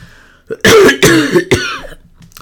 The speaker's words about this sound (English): For this rewrite, any coughing that I do is intentional. I'm gonna point that out.